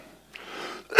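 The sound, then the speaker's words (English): A breathy inhale leads into one sharp, loud cough from a person with a rattling chest, right at the end and abrupt, with no talking around it. “That's why I've been coughing here.”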